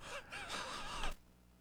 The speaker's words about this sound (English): That cough caught up with me. I had tried to keep it back there, but it wouldn't stay.